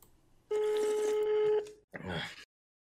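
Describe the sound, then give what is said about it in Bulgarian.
An old-style telephone rings loudly for about a second, a bright jangling bell over a steady tone, followed by a short, rougher burst of sound before it cuts to silence. “Е, бах, мама, това звъни като 50 годишен телефон, човек.”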